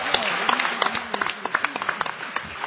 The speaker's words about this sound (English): Please give a round of applause to our panelists.